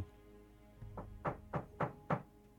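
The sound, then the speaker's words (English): Five firm knocks on a wooden door in a steady, even rhythm, each a dull, resonant thump, with the first slightly softer than the rest. No voices are heard. “I'll knock again.”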